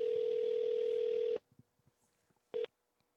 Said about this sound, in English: So, I figured, you know, why not have a little bit of fun today? Let's make a phone call, shall we?